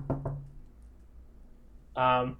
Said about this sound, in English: And yeah, so while this is happening, you hear a knock on your door.